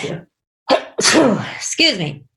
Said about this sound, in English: I'm going to sneeze. Excuse me.